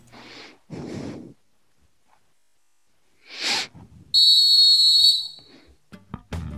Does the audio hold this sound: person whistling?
yes